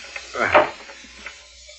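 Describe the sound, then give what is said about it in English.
A short wooden creak and scrape as a secret trap door in the floor is levered up with an iron bar, one strained burst that fades into quiet room tone with a faint knock after. “Some kind of secret trap door in the floor you're trying to move with that iron?”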